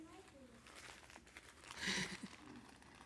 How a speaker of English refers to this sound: So maybe let's take that paper and you can unwrap the next level.